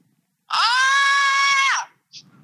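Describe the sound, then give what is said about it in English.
A single loud, sustained high-pitched scream of excitement lasting over a second, rising sharply and tapering off, followed by a brief faint vocal sound. “Now I'm fucking screaming.”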